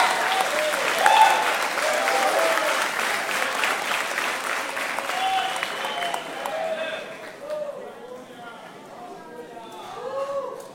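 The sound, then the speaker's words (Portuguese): Sustained applause from worshippers standing to applaud the King of Glory at an evening service, a dense steady patter of many hands clapping for about ten seconds, thinning slightly toward the end with a few voices rising through it. “Se tem alguém que foi alcançado pelo sangue da graça, fique em pé, dando um aplauso ao Rei da Glória nessa noite.”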